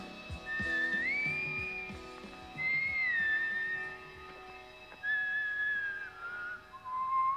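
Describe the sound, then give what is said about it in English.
A whistled melody of sustained, gliding notes in phrases separated by short pauses, the tune wavering and slightly off-key, like a distorted Irish folk tune, heard alone without talk. “It sounds like a distortion of an Irish folk tune.”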